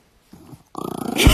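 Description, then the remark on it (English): A dog named Friar, which had been sleeping, lets out a short, low grumble, then a longer rumbling growl that swells louder toward the end, with no one talking. “We have a dog sleeping between us right now,”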